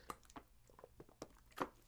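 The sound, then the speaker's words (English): Quiet sipping of water, with a handful of small wet mouth clicks and gulps spaced irregularly over a couple of seconds, no talking. “I mean, I need a sip of my water.”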